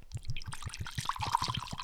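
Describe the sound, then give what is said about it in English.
Liquid glugs from a bottle into a glass in quick, regular pulses, a steady pour made at an odd angle, with a bright splashing trickle building as the glass fills. “The problem is I'm pouring at a weird angle, so.”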